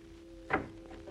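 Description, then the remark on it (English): A single brief clunk of a house door's latch giving way as the door is tried and opened, followed by a softer faint rattle, all over a low steady hum with no one speaking. “Hey, why not try the door, Inspector? It might be open.”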